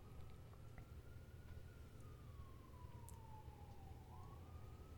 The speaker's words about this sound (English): Sorry, that siren in the background.